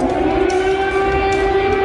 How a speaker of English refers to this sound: Air raid sirens and explosions cracking the skies over Ukraine's capital city. Ukrainian officials say a Russian missile attack targeted infrastructure.